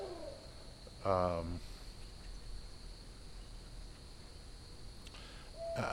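An owl in the Evergreen neighborhood hoots once, a fairly loud, low hollow call, over a steady background of chirping crickets, with a faint second call near the end.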